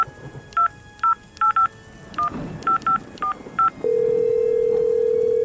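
A phone number is dialed with a quick series of about nine touch-tone beeps at an uneven pace, followed by a steady, unbroken tone that holds to the end. No one speaks.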